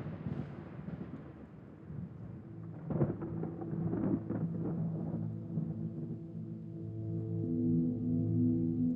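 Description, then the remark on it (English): A deep, rolling thunder rumble fills the space, low and sustained, swelling in the middle with a few sharper cracks before settling into a steady, droning roar with no voices. “Arriving in front of you now, you hear the deep rumble of thunder echo in the air all around you.”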